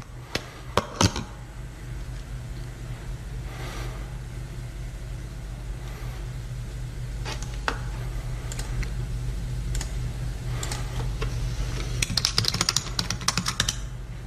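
Computer keyboard typing in short bursts of quick clicking keystrokes, separated by pauses, over a steady low rumble like a running engine. Nobody speaks.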